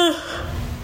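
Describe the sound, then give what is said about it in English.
A brief yawn: a short voiced tone sliding downward, trailing into a soft, breathy exhale that fades out, with no talking. “There's my classic yawning.”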